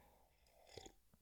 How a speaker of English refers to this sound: Having a sip of my tea.